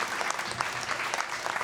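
An audience at a storytelling mic night in Idaho claps steadily, a dense wash of many hands with scattered sharper claps standing out, sustained at an even level throughout with no voices.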